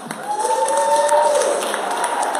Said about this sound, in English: Give yourself a big hand clap.